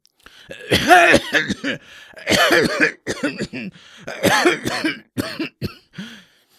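A sick-looking man in his late 60s, sitting at a kitchen table, coughs violently in several harsh, rasping fits, each a rapid cluster of loud hacking bursts, with brief gasping pauses between the fits and no talking.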